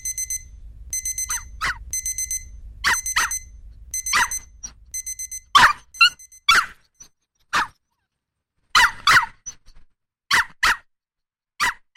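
A small chihuahua doodle barks frantically and jumps, firing off sharp, high-pitched yaps in rapid irregular bursts. Repeated electronic beeping and a low rumble run underneath during the first half.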